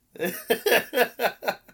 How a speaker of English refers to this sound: But, I didn't mean to just clear my throat, like, directly in the microphone. That premier content. That's what people came to hear. ASMR.